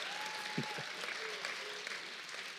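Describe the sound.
A crowd applauds the day's two hosts at a Sunday gathering at Connect. The clapping is steady and dense and holds at an even level for the whole few seconds, with faint voices and a brief thin tone drifting through underneath.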